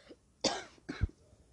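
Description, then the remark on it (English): Two raspy coughs, one right after the other, loud, with a slight throaty catch at the end and no talking around them. “Kind of sound like I was gonna cry, but I was just gonna cough.”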